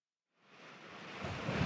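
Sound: sea waves crashing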